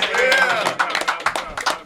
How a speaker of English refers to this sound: Hey, can we get a round of applause?